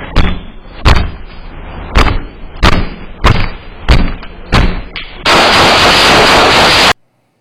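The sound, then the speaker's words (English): Eight sharp gunshots from a video being played ring out at a steady, evenly spaced pace over a low background, followed by a loud burst of harsh static-like noise that cuts off abruptly into silence. “He has a gun, by the way.”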